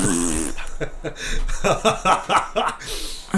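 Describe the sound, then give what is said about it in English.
A voice blows a sputtering, buzzy raspberry imitating a fart, in several choppy bursts, with a bit of chuckling mixed in. “Godzilla fart!”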